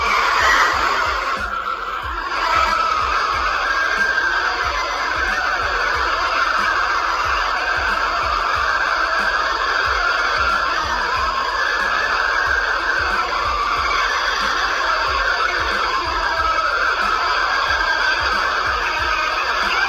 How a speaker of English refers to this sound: Strange screaming sounds were heard coming from the bottom of the hole.